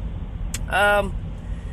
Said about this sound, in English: Welcome back to another episode of Dr. Movie, where I'm driving my car and talking about movies, and you be listening.